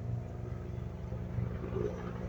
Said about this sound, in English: Helicopter. It's not Trump. Just hospital.